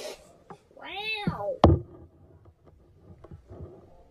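A cat lets out one clear, drawn-out meow that rises and falls in pitch, followed immediately by a sharp knock and then scattered soft clicks and faint background rustling.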